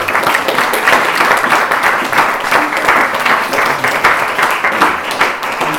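A sustained round of applause from many hands, a dense, steady crackle of clapping that stays loud and even for several seconds with no voices over it.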